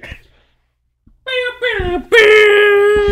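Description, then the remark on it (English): A person screams in three loud, high-pitched bursts after a short silence, the final shriek the longest and loudest, sustained and strained. “You started screaming at me just now”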